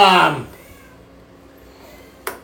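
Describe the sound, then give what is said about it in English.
A single loud meow from a male cat kept indoors, with a falling pitch at the very start, then quiet room tone and a brief soft click near the end. “And you're going to hear the cat tonight because he's pissed because he kept sneaking outside and now he's on lockdown.”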